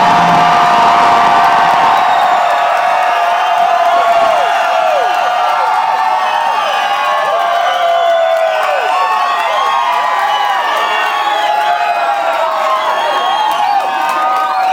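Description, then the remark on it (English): A large crowd cheers and whoops loudly and continuously for drag performer Sharon Needles, the reigning Miss RuPaul's Drag Race, with many high-pitched shrieks and yells rising over a dense roar of voices and some clapping, sustained without a break. “Hearing you cheer for me knows that you are cheering for yourself, because RuPaul didn't give me that fucking crown.”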